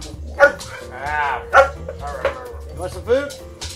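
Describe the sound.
A dog named Grover gives several short, sharp barks mixed with a drawn-out, high whimpering whine, in uneven bursts across a few seconds, with a person's voice heard faintly in between.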